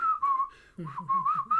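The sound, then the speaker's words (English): A clear whistled rendition of a film's march theme in a steady marching rhythm, the pitch stepping up and down through a short melody, with a lower accompanying tone joining midway. “I only hear the whistling, you know.”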